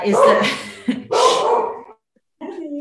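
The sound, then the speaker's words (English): The speaker's dog barks loudly in two sharp, sustained bursts, followed after a short pause by a higher, whinier yelp. “Sorry, it's my dog.”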